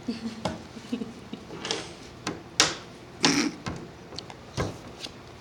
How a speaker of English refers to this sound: She rolls the dice.